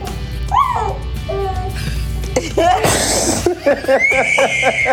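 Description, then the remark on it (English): A baby girl in Philadelphia lets out a series of sharp, high-pitched frightened shrieks, ending in a long piercing scream, after pulling herself up and accidentally touching her dad's foot; loud, with other voices mixed in around it. “She screamed. That's a scary foot.”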